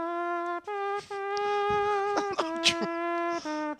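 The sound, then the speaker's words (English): A buzzing, brass-like tone made with the mouth plays a short jingle of held notes with brief breaks, fairly loud, imitating a trombone. “That's my mouth. It sounds like a bloody trombone.”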